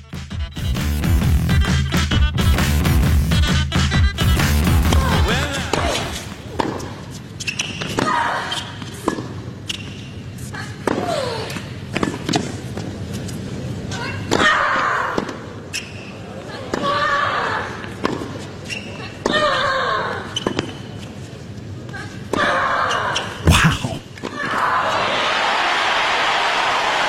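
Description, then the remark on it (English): Sharp tennis ball strikes pop back and forth, each paired with a loud, short grunt from two 19-year-old women players in an Australian Open match, while crowd noise swells and spectators mock the grunts with exaggerated shouts. “That's the Australian Open match between two 19-year-old women doing that women's tennis grunting thing, and then the crowd started to mock them.”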